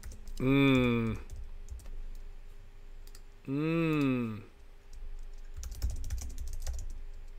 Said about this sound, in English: What are you rattling off over there? I mean, you're running a show here and you're typing. Yeah, no, I'm answering the questions. I got questions coming in here.